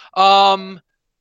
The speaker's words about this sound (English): Barking dog noise in the background.